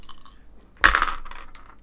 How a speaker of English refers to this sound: So yeah, I've got 10 damnation, so I'm adding 2 to my roll. Yeah. So I'm just going to roll four dice.